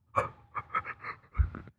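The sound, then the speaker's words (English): Heavy panting breaths in a quick uneven rhythm, several rasping inhales and exhales over a couple of seconds with a low thump partway through. “You kind of had some heavy breathing there, out though.”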